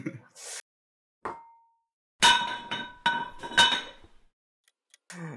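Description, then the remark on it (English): Glasses of red wine clink with a bright, ringing chime: one light tap, then a louder cluster of clinks and rattles that shimmer briefly before fading, with no talking. “So we've got you a lovely glass of red wine.”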